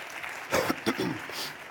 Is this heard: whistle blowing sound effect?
no